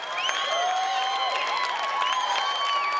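A crowd cheers and applauds steadily for about three seconds, high whoops and whistle-like calls riding over a dense, even wash of clapping, with no one speaking.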